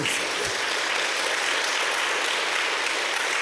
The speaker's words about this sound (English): And, oh, thank you for the applause.